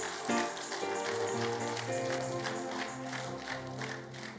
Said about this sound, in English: Once again, give God a good clap of hand.